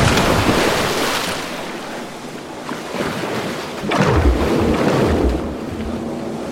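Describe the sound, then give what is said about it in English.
A heavy splash as a person with tied hands, shoved over a ship's railing, plunges into the sea at about four seconds, with surging waves, rushing water and gusty wind all around, no voices. “You hit the water with a tremendous splash.”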